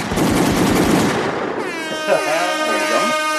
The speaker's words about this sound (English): I'm going to give Mustafa his gunshots.